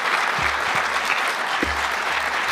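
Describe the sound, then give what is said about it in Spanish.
A crowd applauds a speaker who refuses to resign over his management of Spanish football, a dense wash of clapping hands that stays loud and even throughout with no voices rising above it. “La gente lo aplaudía como si fuera alguien que está postulándose a una presidencia de un país.”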